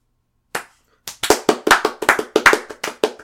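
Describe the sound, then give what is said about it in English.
A slow clap: one sharp handclap, a half-second pause, then a steady run of loud, evenly spaced claps that keeps going, with no talking. “There's a slow clap moment.”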